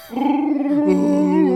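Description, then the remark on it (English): A voice imitates a long, wavering Wookiee-style howl, a strained, growly vocal wail that rises and bends in pitch for over a second, loud with no other talk. “That's his language. The howl, the Wookiee speak.”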